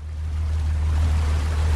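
A small dive boat's engine drones steadily and low on the ocean about 12 miles off Cambodia's coast, with a constant wash of water and wind noise over it. The sound stays even, with no voices.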